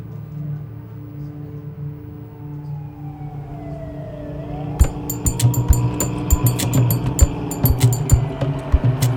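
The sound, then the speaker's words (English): Ambulance and police car sirens wail at a university, a couple of ambulances and two police cars with lights flashing, their tones gliding up and down over a low engine-like rumble, joined midway by a series of sharp, irregular clicks and knocks. “When I arrive at the university, there are a couple of ambulances with their lights flashing. Two police cars.”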